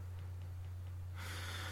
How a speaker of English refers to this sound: Sorry, I've just did a big yawn.